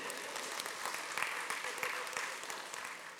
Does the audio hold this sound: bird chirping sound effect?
no